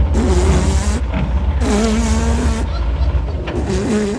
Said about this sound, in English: At last, a car.